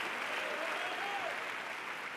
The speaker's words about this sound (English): Come on, clap your hands. Give God a praise as you see it tonight.